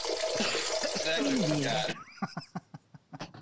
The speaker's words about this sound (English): if you're pissing like that, you're something wrong with your bladder. It sounds like a fucking faucet.